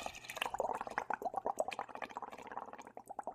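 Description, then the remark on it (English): Someone vocally imitates a Keurig coffee machine brewing: a rapid, bubbly sputtering and gurgling that runs steadily for about three seconds at moderate volume, with no words spoken. “do you have a Keurig that you just fired up there”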